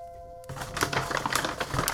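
A Trader Joe's paper bag, not too full and holding mostly paper, crinkles and rustles, a burst of dry crackling that starts after a brief quiet moment and continues in irregular crisp bursts.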